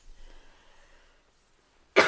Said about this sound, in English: All right, y'all. I'm done. I'm coughing. I'm going. Y'all take care, and hopefully I'll sound better next week.